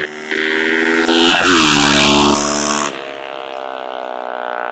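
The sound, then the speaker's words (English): A motorbike passes in the street, its loud, buzzing engine roaring with a harmonic whine rising then dropping in pitch as it goes by, leaving a steadier droning hum fading out afterward. “There's a motorbike.”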